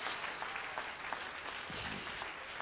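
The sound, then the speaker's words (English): A church audience claps their hands in praise of the Lord in a steady, dense wash of applause that continues throughout, with a brief murmur of voices rising underneath partway through. “Somebody clap your hands with me and praise the Lord.”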